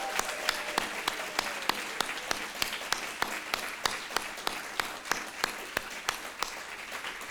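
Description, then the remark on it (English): An audience applauds steadily, a dense wash of clapping with one sharp pair of hands standing out in an even, quick rhythm throughout, moderately loud and with no talking. “give it up for Chris and for Sarah.”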